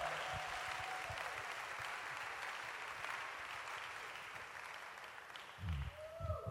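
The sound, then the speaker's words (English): A church audience claps their hands together for a man coming up to give a testimony, in a dense, steady wash of applause that holds for several seconds, with a few heavier low thumps and stirrings toward the end. “All right, clap your hands for him.”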